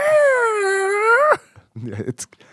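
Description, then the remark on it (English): A person imitates whale song with a long, drawn-out tonal moan of about a second, gliding slightly up at the end, then breaks off into brief laughter and mumbled talk. “You only communicate in whale song?”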